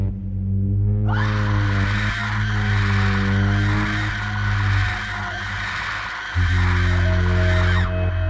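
A loud, sustained high-pitched shrill scream rises after a low droning hum, holding for several seconds with a brief break before continuing, harsh and close with no speech.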